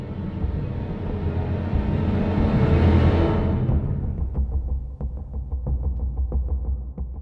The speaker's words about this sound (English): There's also a synth heartbeat sound that plays through the extremely suspenseful moments in the film.